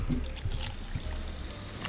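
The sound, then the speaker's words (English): Soda dribbling and trickling steadily for a couple of seconds as it is spilled while being poured from a can, a soft continuous splashy wash with a few brief spatters. No one speaks. “I just spilled it everywhere.”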